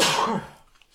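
A single loud sneeze bursts out, a sharp breathy blast that fades quickly into near silence. No one talks during it.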